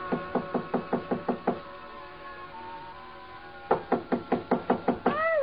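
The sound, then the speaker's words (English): Two bursts of rapid, firm knocking on a hotel suite door on the 9th floor, about seven raps each, loud, separated by a pause of a couple of seconds with no talking. “So I tried knocking.”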